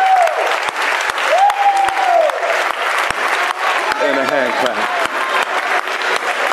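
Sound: audience applauding and clapping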